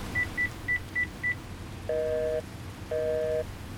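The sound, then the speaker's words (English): Mobile phone call beeps as someone tries to call from an unsheltered balcony in heavy rain: five quick, evenly spaced high bleeps, then two longer, lower double-toned beeps signalling a failed call with no signal, all over a steady hiss of rain. “Now the phones are down. I've no signal.”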